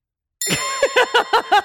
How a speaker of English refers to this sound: It's a hotel bell. The winds of anarchy are blowing through Cincinnati. It's a Route 66 hotel bell.